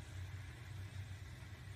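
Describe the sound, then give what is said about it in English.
A pulling tractor's engine idles steadily, a deep, even low rumble with a constant hiss over it and no voices, holding at a moderate level throughout. “I'm guessing he moved a little weight from one end to the other on this tractor.”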